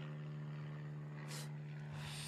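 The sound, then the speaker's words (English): A steady, low droning hum of a propeller airplane flying directly overhead, fairly faint, with a couple of brief hissy bursts; no one speaks. “I don't want to talk over a fucking airplane, God forbid.”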